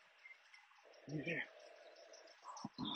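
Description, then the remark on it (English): Faint birdsong chirps over a steady outdoor hiss, with a few brief low rumbles and murmurs passing through. “Lots of birds you can hear.”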